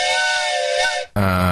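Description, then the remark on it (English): A loud train whistle blows a long, steady, high-pitched blast for about a second, then breaks off briefly before a second, deeper and fuller-toned blast sounds. “By train. Yes, arrived by train.”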